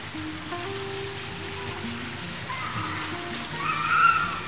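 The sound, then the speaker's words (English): A salt water fountain in a gazebo near the Polish village of Jaworzynka splashes in a steady, continuous rush at moderate loudness, with faint low humming tones underneath and a slight swell near the end. “In one of these gazebos, there's a salt water fountain.”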